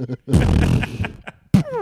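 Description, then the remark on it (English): A loud, rumbling fart lasting under a second, raspy, followed by a short vocal grunt or exclamation. “I would fart loudly.”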